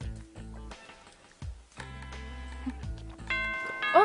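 A doorbell rings out a tuneful chime, a series of ringing bell tones played one after another in a short melody, moderately loud with no voices.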